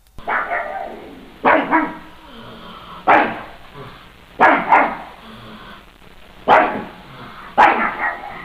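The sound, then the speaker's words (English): A dog barks in a series of sharp, loud barks, about six bursts spaced unevenly over several seconds, some doubled into quick pairs, with no talking. “He says he was promised dog food and bacon if he came to speak today.”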